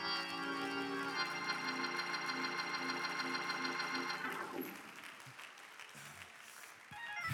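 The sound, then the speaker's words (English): An audience claps their hands in praise to the Lord in a steady, scattered patter that continues after a loud, sustained organ-like chord cuts off midway. “Oh, come on, somebody clap your hand.”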